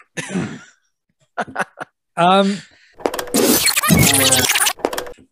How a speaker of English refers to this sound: I'm sorry for burping right into the microphone there.